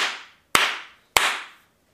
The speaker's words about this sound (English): Clap. Clap.